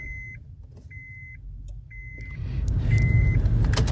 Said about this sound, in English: Let's turn the car on. Let's see what the temperature is.